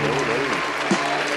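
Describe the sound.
Dense, steady audience applause fills the short clip, a broad wash of many hands clapping at an even loudness, with a faint voice murmuring underneath.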